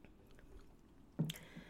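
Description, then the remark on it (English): A quiet stretch, then a single short sip from a drink: a brief wet mouth sound with a faint clink-like ring trailing after it. No one talks. “I'm just going to point out some observations after I take a sip.”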